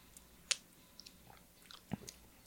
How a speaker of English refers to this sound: Ready? Okay. Looking good. Sips. Here you go.